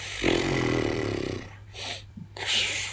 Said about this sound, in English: Speaking of dogs, we've just set next door's Toto off.